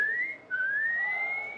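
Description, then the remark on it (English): A person whistles to call a hygiene robot: two sustained rising notes, the first short and breaking off briefly before a longer, steadily climbing tone, clear with no talking. “Cass scooped up Janet's discarded lunch tray, passed it through the underdoor access slot, and whistled for the hygiene bot.”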